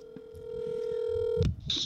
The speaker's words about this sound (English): But it's a good old-fashioned phone call from your favorite scientist.